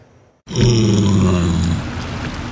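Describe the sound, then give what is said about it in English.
A pot-bellied pig that survived a wildfire at Monte Lake, near Kamloops, lets out a long, loud, low grunt that starts abruptly after a brief quiet moment and drones on steadily, a deep rumbling snort with no talking. “Pot-bellied pig is among the animals that survived the flames.”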